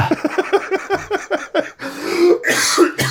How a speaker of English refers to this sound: Don't make me laugh. I got a little bit of a cough here.